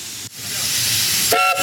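A steam locomotive whistle blows on a train journey to the town of Machadodorp, with a harsh, rushing hiss of steam, then sharpens into a loud, bright tone for a short burst near the end, piercing.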